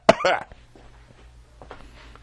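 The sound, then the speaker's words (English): Two quick, harsh coughs in close succession, loud and abrupt, followed by a low hum and a few faint, soft sounds as things settle. “We don't have Cuban cigars, because that's illegal, but hold on, I have to cough.”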